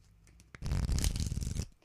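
A deck of playing cards is riffle-shuffled, producing a single fast, fluttering burst of clicks that lasts about a second before stopping, with no talking.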